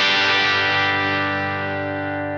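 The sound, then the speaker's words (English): A single electric guitar chord through a distortion pedal, with the knobs set to noon and the tone knob rolled up. It rings out loud and sustains, thick with bright, fizzy high end, then fades only slightly over a couple of seconds with no talking. “That sounds like a old Fender Champ.”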